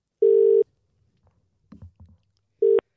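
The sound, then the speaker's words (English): A telephone ringback tone sounds in a steady buzzing burst as a radio show phones a guest, followed by a pause with faint clicks and rustles, then a second short burst of the same tone begins. “But let's get Nick on the phone.”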